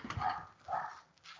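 A dog barks three times in an uneven rhythm, the barks sounding somewhat muffled, with no one speaking.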